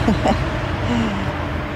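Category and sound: vehicle, passing cars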